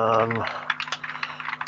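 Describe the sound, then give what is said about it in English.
Rapid clatter of keys being struck on a computer keyboard while someone looks something up, a quick irregular burst of clicks following a brief hummed voice at the start. “I'm typing furiously here while I look this up again.”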